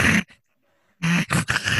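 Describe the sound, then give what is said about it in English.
An animatronic wolf on a ride growls in loud, rough bursts: a short snarl, a pause of near silence, then a longer gravelly growl broken into several throaty pulses. “Oh, hi, wolf.”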